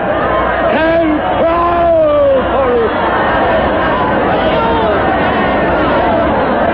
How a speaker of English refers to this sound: Listen, they're shouting and screaming and running. The square is full of deserters with more coming.